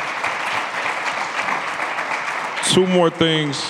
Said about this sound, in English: Y'all could clap.